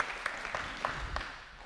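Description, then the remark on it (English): A short burst of audience applause for a volunteer coming out to help: many hands clapping together in a dense, steady patter, with a few sharper individual claps standing out, lasting under two seconds without any voices over it. “Give her a clap, brave.”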